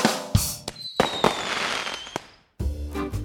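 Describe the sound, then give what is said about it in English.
Fireworks burst in a quick series of sharp, loud bangs, one trailed by a whistling streak and a long crackling fizz, followed by a brief silence and another booming blast. No one speaks. “Because only fireworks on the 4th of July.”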